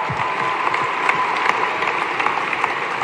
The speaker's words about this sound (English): And I want to just give a shout out to everybody who has put it all on the line and run for president. We've had some incredible women and men from all over this country. Can we give them a round of applause for all the other candidates who have run?